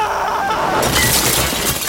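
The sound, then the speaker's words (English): A large concrete fruit falls, smashes and crashes through a roof: a sudden loud burst of breaking and shattering debris that rumbles on for about a second, with no voices. “It smashed Tarlov and crashed through the roof.”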